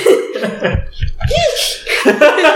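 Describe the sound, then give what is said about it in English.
A person imitates hiccups in a goofy, nerdy voice: a quick run of short, gulping hic sounds mixed with nasal vocal squeaks, loud. “Can you do hiccups in a nerd voice?”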